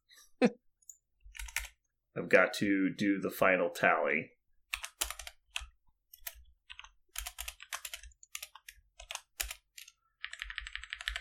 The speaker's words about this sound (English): Some clicking noises. Don't freak out